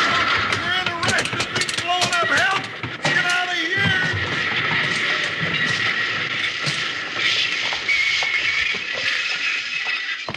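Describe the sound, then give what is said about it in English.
A steam train grinds to a stop: loud, wavering metallic squeals ring out over a heavy rumble at first, then fade into a steady, hissing roar that continues to the end. “Hey, now, doggone it, well, what's that engine there doing? Something's wrong.”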